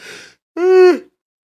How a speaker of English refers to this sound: I'm going to yawn.